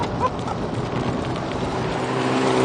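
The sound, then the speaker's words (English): A standard Plus 4 car engine, 255 brake horsepower and 258 lb-ft of torque, breathing through its intake: a steady, breathy low rumble with a rushing whoosh layered on top, holding an even loudness throughout, with a faint rising whine near the end. “I like the fact you can hear it breathing through that intake over there.”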